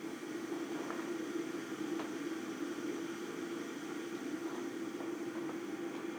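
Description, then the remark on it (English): An electric kettle heats water with a steady rushing hum and a low drone, scattered with faint ticks and crackles. No one speaks. “You can hear my electric kettle.”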